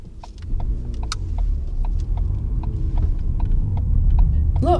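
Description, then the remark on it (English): A car drives straight on through a crossroads on a dark road at night, with a steady low engine rumble that slowly grows louder as it nears, while faint, regular clicking ticks sound on top. “Look, he's driving straight on.”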